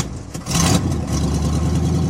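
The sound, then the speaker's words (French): A car engine runs steadily, a low, even rumble with a brief surge in revs near the start, then settling into a constant idle-like hum with no talking. “Au lieu de lui donner une chaussure, il lui donna une voiture.”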